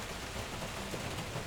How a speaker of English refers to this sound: I'd rather listen to the rain on the roof and the thunder.